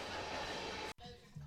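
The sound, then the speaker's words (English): A train passes loudly on railroad tracks right beside the speakers, a dense roar of rail noise that cuts off abruptly, leaving quieter background hum with faint voices. “When we come back, we'll try to be on the other side of this train right here”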